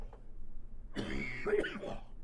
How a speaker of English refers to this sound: Here's what that cough might sound like, as I have one right now.